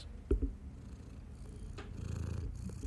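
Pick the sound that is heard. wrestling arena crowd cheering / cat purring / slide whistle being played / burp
cat purring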